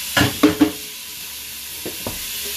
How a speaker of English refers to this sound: But in the midst of me talking to y'all, I'm gonna be washing dishes. So if you hear noise, that's why. Only have a few to wash, so bear with me.